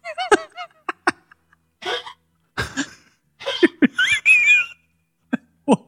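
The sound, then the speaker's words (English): A dog makes a run of harsh honking and hacking noises: irregular bursts, some nasal and wheezy with a squeaky rising pitch, separated by short pauses, with no talking. “That sounds so horrible. Shoot that dog, please.”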